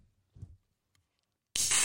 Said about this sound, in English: And then now we are going to open the can of Arnie Palmer.